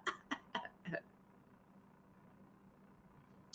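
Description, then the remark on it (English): A quick run of four short, raspy coughs or throat-clearing bursts, followed by a low steady background hum with no one speaking. “your cough.”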